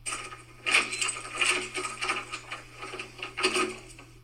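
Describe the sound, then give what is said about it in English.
A front door being forcefully opened, heard as a run of loud rattling, clattering mechanical bursts over several seconds, with a steady low hum underneath and no voices. “I'm thinking it's someone opening the front door, but it sounds very forceful.”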